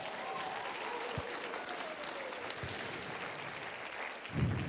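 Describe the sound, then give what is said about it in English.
A church audience applauds a children's panel at a Palm Sunday morning service, a dense wash of clapping that holds an even level throughout, with a few faint voices and cheers mixed in and a brief low thump near the end. “I think we should give them another round of applause.”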